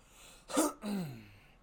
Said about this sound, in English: I'm so sorry that I keep clearing my throat. I had a bunch of dairy and shit, and it just destroys me.